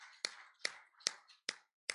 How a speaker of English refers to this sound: Let's give the Lord a hand clap of praise while you just sit down for a few minutes. Hallelujah.